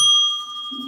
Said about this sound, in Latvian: patīk arī zvaniņš.